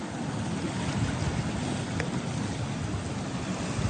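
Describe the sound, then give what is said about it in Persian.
Steady outdoor wind and rushing water, a broad continuous wash of sea and surf with gusty rumble buffeting the microphone, no voices present. “آه دم دریا بودی، به به به.”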